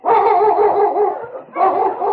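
sled dogs barking

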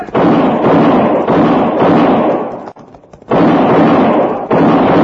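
gunshots

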